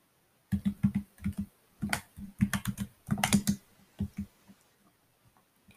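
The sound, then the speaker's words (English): Rapid keystrokes clatter on a computer keyboard as someone types their name, in uneven bursts with short pauses between flurries of clicks, moderately loud, then trailing off into quiet. “Oh, you're typing your name.”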